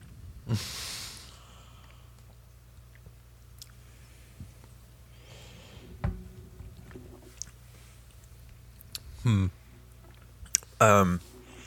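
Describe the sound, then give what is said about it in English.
Someone gulps down an apple-pie-flavored drink: a sharp breath, a dull knock, then a few swallows and loud exhaled breaths near the end, with quiet stretches in between. “Let's go. Bottoms up.”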